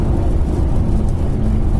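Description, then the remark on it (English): A steady, low droning rumble of a Mercedes-Benz car cabin at cruising speed, with engine and road noise holding an even level throughout and no voices. “this car is not just thrifty when it's cruising, but thrifty all round as well.”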